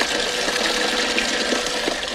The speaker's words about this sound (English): He was pouring water in a bucket.